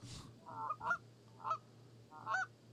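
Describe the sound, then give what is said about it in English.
Goose calls honking in a short series, about four nasal, mid-pitched honks with gaps between them, over a steady low hum and no talking. “What calls does he have?”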